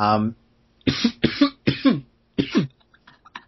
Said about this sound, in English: Stop laughing at me. Everybody coughs.